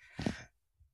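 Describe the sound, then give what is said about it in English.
A single quick sneeze, a short breathy burst lasting under half a second, with no talking around it, followed by near silence. “Sorry. Bless you.”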